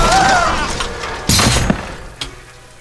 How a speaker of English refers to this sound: What are we going to do? This moment, I think we're going to smash into a lamppost.